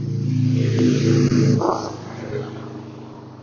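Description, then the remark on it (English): A loud motorcycle riding down the street rumbles past with a deep, throaty drone that holds steady for about a second and a half, then quickly fades into a softer low hum. “Nerd riding down the street on a loud-ass motorcycle.”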